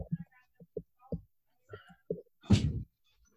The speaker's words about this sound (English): Hold on for one second. I'm just going to close the door here.